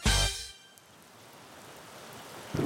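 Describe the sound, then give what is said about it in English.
Steady outdoor rainfall outside a headquarters building, a soft even patter and hiss that continues throughout, following a brief loud burst of sound at the very start. No one speaks. “We're outside the Vindicator headquarters in the rain, waiting for our ride.”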